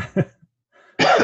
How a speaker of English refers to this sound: excuse the coughing. The cedar's kicking it down here.